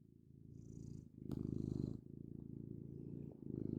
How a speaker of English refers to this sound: But he basically, what he does is he just does some extreme kneading, you know, making biscuits, purring, and then he starts kind of shaking his, he starts shaking his back.